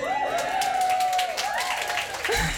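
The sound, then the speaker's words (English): A crowd claps and cheers steadily throughout, a dense wash of applause with rising whoops and shouts riding over it, fairly loud. “I know, I cheer too.”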